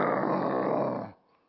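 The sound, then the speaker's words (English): A person growls grumpily, imitating an animal: a single low, rough, rumbling growl held for about a second, loud, then cut off into near silence. “You know, grumpy growls.”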